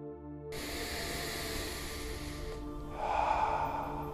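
A slow, deep breath drawn in with a long airy rush, then released in a fuller, louder exhale, with no talking.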